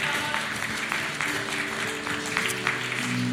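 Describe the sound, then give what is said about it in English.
An audience claps and cheers for Jesus in a steady, dense wash of applause, with scattered voices and a sustained musical tone humming underneath. “Hey, can we just give a round of applause for Jesus today in the house?”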